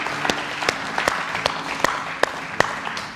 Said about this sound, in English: Let's give a clap there.